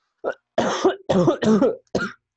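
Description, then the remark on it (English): A harsh coughing fit: about five rough bursts in quick succession, the middle ones longer and raspier, with no talking in between. “God, I'm coughing so much, I might have COVID.”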